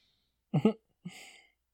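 burp

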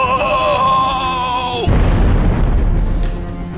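explosion sound effect

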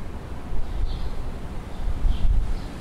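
wind outdoors

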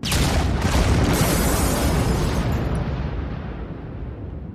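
explosion blast

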